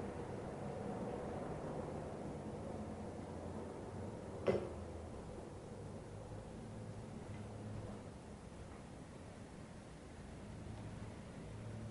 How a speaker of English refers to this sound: allowing the sound of the plane to saturate what's being experienced.